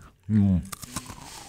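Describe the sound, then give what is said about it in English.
A brief hummed voice, then a few crisp crunches as someone chews a crunchy cracker-like snack, the bites sharp and irregular before fading into quiet chewing. “I'm chewing. It's not bad. Ain't bad. It just tastes like a cracker, right?”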